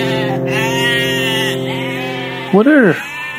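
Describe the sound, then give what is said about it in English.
Goats bleat in a steady, wavering chorus for several seconds, then one goat lets out a louder, rising-and-falling bleat at the end. “What are all these goats doing here?”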